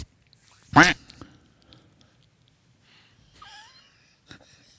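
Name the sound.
duck quacking sound effect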